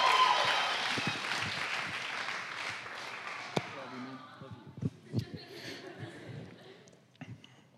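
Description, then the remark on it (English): A crowd applauds a man as he comes up to give the word, a dense wash of clapping that starts loud and gradually fades over several seconds, leaving a few scattered claps and faint murmuring at the end. “Let's give him a big round of applause as he comes up to give the word.”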